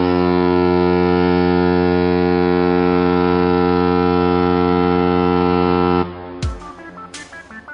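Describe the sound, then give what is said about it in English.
A bell-like signal tone, rung to signal time to wrap up a show, rings out steady and loud with many bright overtones, holding for about six seconds before cutting off into a brief scatter of noisy bursts. No one speaks. “Did you hear that? It's the bell. It's signifying time to wrap the show.”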